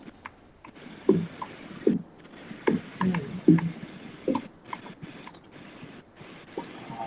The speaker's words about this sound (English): what are you clicking? Me? Well, just checking the topic list and filling up what we've been talking about.